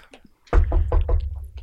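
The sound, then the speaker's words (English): A quick series of about five sharp, hollow knocks on a piece of wood, evenly spaced, with a low rumble underneath and no talking, as someone announces themselves. “I actually keep a piece of wood to knock when I announce myself, sir.”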